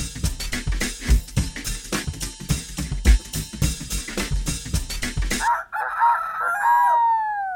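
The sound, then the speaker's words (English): A novelty alarm clock goes off: about five seconds of loud, rapid rattling clatter, then a shrill, wavering rooster crow that rises and falls over a couple of seconds, with no talking. “God damn, I hate that novelty clock.”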